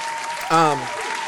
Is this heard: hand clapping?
yes